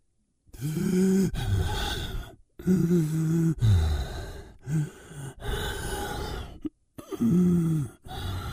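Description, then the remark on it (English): A person imitates heavy, painful breathing as a voice performance: a series of loud, groaning gasps and strained exhales, each voiced breath separated by brief pauses in an uneven, labored rhythm. “So, first you wanted heavy, painful breathing.”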